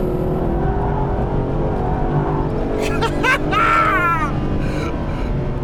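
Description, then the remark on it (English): A loud race car engine roars steadily at Goodwood, its pitch climbing and dipping as it accelerates and eases off through bends, braking hard and shifting down to fourth gear for a quick right-hand corner with the car sliding sideways, with a sharp sweeping whine partway through. “Hard on the brakes here, down just one gear to fourth. Another quick right hand corner, slide on the car.”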